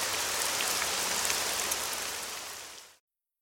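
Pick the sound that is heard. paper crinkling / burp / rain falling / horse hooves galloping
rain falling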